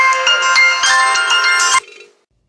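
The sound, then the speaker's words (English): A phone ringtone for an incoming call from the speaker's wife plays a loud, bright melodic pattern of tonal notes for nearly two seconds, then cuts off abruptly and fades out. No one speaks. “Okay, that was my wife called and said, get some water.”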